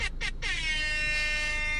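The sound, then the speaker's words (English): An air horn sound effect played from a phone app, thin and tinny, gives two quick short blasts and then a long, sustained blare that holds steady until the end. “It almost sounds like a fucking goal horn”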